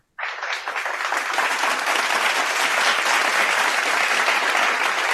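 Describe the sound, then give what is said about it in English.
A burst of crowd applause, played as a sound effect from a button, begins abruptly and holds steady for about five seconds, a dense, loud wash of clapping with no voices over it, like a canned sound effect. “Oh wait, now I got a button for that.”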